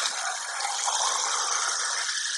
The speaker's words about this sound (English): All right, so now I think I'm going to add another can of water to this.